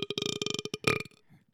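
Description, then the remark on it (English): A loud burp rattles out in one long, croaky stretch, pulsing rapidly for about a second before trailing off into a soft, low rumble. “Oh, God, I blocked the burp.”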